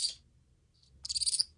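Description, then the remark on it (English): High, shrill chirping squeaks from grey-headed flying fox pups, about 6 weeks to 2 months old, making contact calls to their mother: a brief burst, a faint squeak, then a rapid trill of about six pulses, with no talking. “These are contact calls. This is the pup basically calling mum, mum.”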